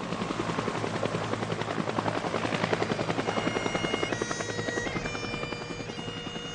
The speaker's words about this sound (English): The three bodies arrived together at Ohakia in three separate Iroquois helicopters for the military service shortly after 1:30.